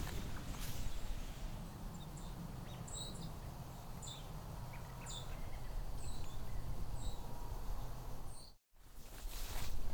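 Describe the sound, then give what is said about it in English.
Many short, high seep and tick calls from a passing fall migration flock of small songbirds in the Niagara region sound scattered and fairly faint over a steady background hiss and low rumble. The flock includes sparrows, warblers such as a yellow-rumped warbler, blue jays and flickers. There is a brief dropout near the end. “As you can hear, there's a lot of seeping sounds and ticks and things like that.”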